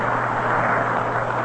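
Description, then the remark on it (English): The president's car engine rumbles steadily as it pulls away from Griffith Stadium after a ball game, a dense, constant drone with a low hum underneath, holding an even loudness throughout with no voices. “Car has driven up to the box. President getting into the car.”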